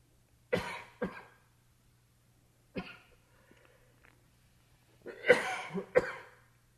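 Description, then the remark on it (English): Several people cough in scattered clusters: a pair near the start, a single one midway, then a harsher burst of coughing near the end, set against a quiet background with faint shuffling as people move. “People are coughing, moving, bird singing outside.”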